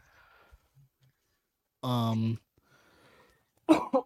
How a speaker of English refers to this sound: Sorry. Had a cough there.